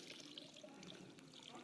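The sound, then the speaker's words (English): A soft, steady stream of water pours continuously onto seeds for under two seconds, a faint trickling splash with no one talking. “who among us will continue watering these seeds?”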